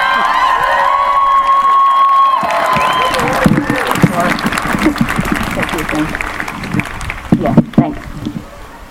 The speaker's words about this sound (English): Please give her a round of applause. More applause, guys, come on.